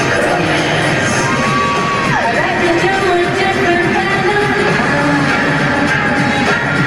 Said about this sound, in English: Can I play you a tiny bit please, of one of the songs, which was just astonishing. She was on flipping great form. This is, well, one of the best ever songs she's ever done, and it was so hot, I nearly got pregnant.